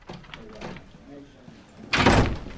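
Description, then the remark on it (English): Soft voices murmur briefly, then a man bursts confidently through doors with a sudden loud bang and a rushing whoosh that lingers for about half a second. “Billy bursts through the doors with confidence.”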